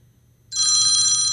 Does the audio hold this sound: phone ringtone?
yes